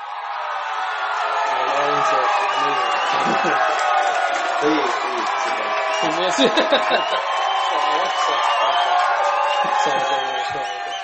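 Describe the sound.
A crowd cheers and shouts continuously for about eleven seconds, a dense, steady roar of many voices with scattered whoops and yells rising out of it, fairly loud throughout.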